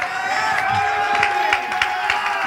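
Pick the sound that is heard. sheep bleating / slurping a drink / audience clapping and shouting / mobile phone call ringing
audience clapping and shouting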